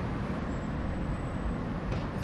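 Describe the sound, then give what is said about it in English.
A steady, dense rumble of road traffic entering the Rotherhithe Tunnel, with a heavy low-end drone, continuous and unbroken. No voices or distinct horns stand out. “The hum of traffic entering the Rotherhithe Tunnel,”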